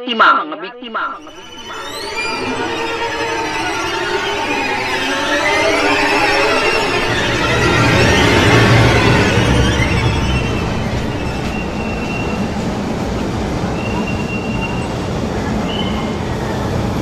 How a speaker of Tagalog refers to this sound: Pedro Hill Station, LRT 1, around 6 p.m. Nagmamadaling lumabas si Albert sa tren na iyon.